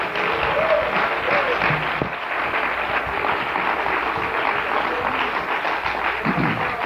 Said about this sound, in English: Everybody stand. Clap your hands to the glory of God.